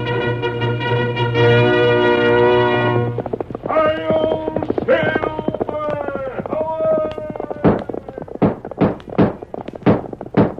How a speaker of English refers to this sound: Fiery horse for the speed of light, a cloud of dust, and a hearty hi-yo, Silver, the Lone Ranger.